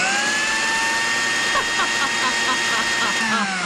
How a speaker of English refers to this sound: Oh well, I'll just switch the blender on anyway.